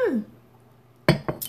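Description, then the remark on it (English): Two aluminum cans of Simpler Wines rosé from Trader Joe's knock together in a quick toast, a bright metallic clink followed by a second lighter tap and a short high rattle, after a near-silent pause. “Cheers. It's in a can.”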